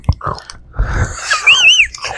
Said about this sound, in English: Just gonna open a Cliff Bar.